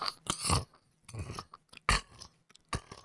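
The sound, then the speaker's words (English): A voice imitates the crunching sound of bugs chewing in a ceiling, in irregular bursts, about four or five gritty crackles separated by brief pauses, fairly quiet. “So as I tip my head over and I'm walking past, I hear this crunching sound.”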